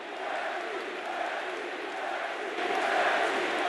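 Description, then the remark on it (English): A crowd sound effect: a large crowd roars and chants together in a dense, steady wall of voices, swelling slightly louder toward the end, with no single speaker standing out. “All right, so we got applauses. We got boos. We got chant.”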